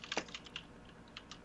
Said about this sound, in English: who is typing at Warp Factor 12 over there?